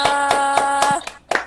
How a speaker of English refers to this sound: Standing ovation?